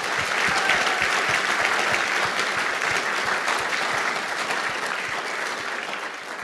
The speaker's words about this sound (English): And so even though they probably won't ever hear this, I think we should give them a round of applause too.